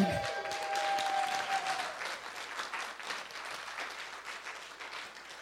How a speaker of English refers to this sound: So I hope that you will join me in applauding as I hand cold hard cash to our friend